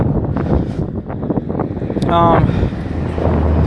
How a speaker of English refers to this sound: Oh, fuck. Oh, it's really dusty now. Fuck. I'm blind. It's really windy. I don't know why.